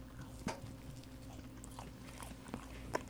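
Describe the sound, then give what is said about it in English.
Someone chews a sour watermelon candy with a marshmallow middle directly into the mic: a few soft, sticky bites and wet mouth sounds, spaced irregularly over a low steady hum, with no talking. “Should I chew directly into the mic?”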